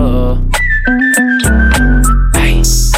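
A shrill, steady whistle holds one high pitch for nearly two seconds, loud and close, riding over a thumping bass-heavy beat with sharp percussive hits.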